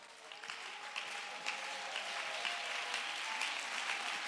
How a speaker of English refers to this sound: Let's clap our hands and give him some praise.